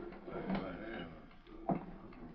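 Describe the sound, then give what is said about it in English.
A door is pushed shut with one sharp thud partway through, set against low, muffled room noise and indistinct background murmur. “Just step inside and shut the door.”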